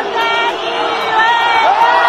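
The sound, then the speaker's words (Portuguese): A large stadium crowd of Verona supporters at an Italian league football match makes loud, sustained monkey-like hooting noises at a player as the ball reaches him, a dense roar of many voices filling the space continuously for a couple of seconds. “É possível ouvir a torcida do Verona quando a bola chega no Balotelli fazendo um som de macaco”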